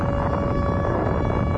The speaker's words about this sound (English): Is this just this forever? It's just like this. It's just an air raid siren and explosions.